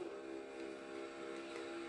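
A race car engine held in fifth gear, heard from an in-car view, a loud, steady buzzing drone with a constant pitch and rich harmonics that holds unchanged throughout, with no voices.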